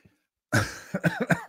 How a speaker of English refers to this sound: Sorry. I coughed and then I remembered what I wanted to do earlier.